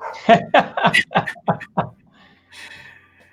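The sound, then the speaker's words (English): The speaker's dogs at home, heard as a road trip ends, bark in a quick run of about seven sharp yaps, followed by a softer, high-pitched whimper trailing off. “The road trip has ended, and I hear my dogs.”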